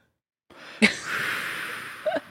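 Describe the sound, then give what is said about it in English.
A sustained airy inhale from a Juul vape, starting after a sharp click and drawing steadily for about a second before ending in a couple of short breathy puffs. No talking. “You and I, you might be hearing, listeners, maybe an inhaling sound, like somebody breathing in the air from heaven.”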